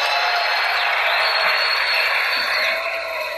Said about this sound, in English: Listen to the fucking applause this guy gets for this.